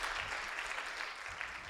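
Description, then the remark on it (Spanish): A church audience applauds for God during a bilingual Spanish and English morning service, a dense, even wash of many hands clapping with no breaks, fairly loud and sustained throughout. “Levante un aplauso para Dios esta mañana si tú lo crees.”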